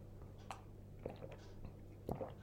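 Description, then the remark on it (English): Someone takes a quiet sip of tea, a few soft slurping and swallowing sounds spaced over a couple of seconds, with no talking. “And it kind of just sounds at the moment, I feel like, sorry, tea sip.”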